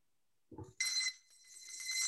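A bright metallic bell clangs once after a short low thud, its ringing tones sustained and shimmering loudly, a boxing round bell marking the end of a three-minute, 180-second round of talk on the Bell to Bell show, fading slightly then swelling again.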